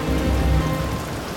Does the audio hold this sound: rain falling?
yes